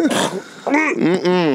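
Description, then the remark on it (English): Someone clears their throat and hacks up phlegm: a raspy, gurgling rasp followed by two loud, voiced guttural hawking sounds, with no speech. “Let me just cover up this loogie sound here.”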